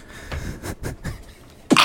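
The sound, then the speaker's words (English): A few breathy, hitching inhales build up before one sudden, loud sneeze bursts out at the very end. No one is talking. “I'm about to sneeze, I can feel it.”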